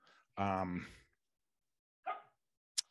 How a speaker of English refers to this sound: my dog Pepper, if you've not heard her bark, she seems to love barking on my podcast review records now